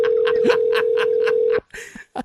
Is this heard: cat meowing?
no